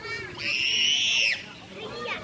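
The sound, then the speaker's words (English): A child on a playground in Germany lets out one long, shrill scream lasting about a second, piercing and steady in pitch, over a busy background of other children's voices and playground chatter. “So we thought we'd check in with someone in Germany, where it sounds like kids on the playground scream bloody murder just like American kids.”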